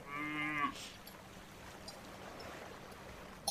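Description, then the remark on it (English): A cow lets out one short, clear moo right at the start, its tone dipping as it ends, followed by a steady wash of outdoor background noise with no voices. “Well, for starters, I don't remember cows being able to graze on the ocean like those over there.”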